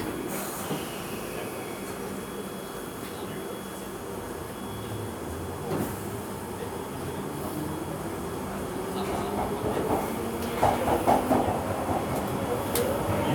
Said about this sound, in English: The next station is Flight Watch. Please mind the gap between the train and the platform.